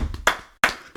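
A few sharp, crisp hand claps at an uneven, unhurried pace, a round of applause for a world champion. Each is a bright percussive smack with a quick decay, and no voices are heard.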